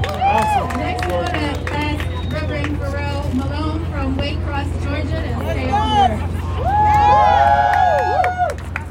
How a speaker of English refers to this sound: Come on, let's give Reverend Timothy McDonald a hand.